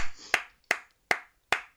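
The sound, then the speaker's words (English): Four sharp hand claps in a slow, even rhythm, each crisp and bright with a short ringing tail, with no voices and near silence between them. “2 claps.”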